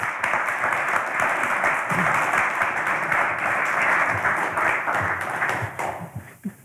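A crowd breaks into sustained, loud applause for a speaker coming up onto the stage, a dense wash of many hands clapping at once that holds steady for several seconds before thinning out into a few scattered claps at the end.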